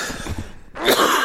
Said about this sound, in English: I feel like a character in a Disney movie from the 50s. Like when they get excited, they start coughing.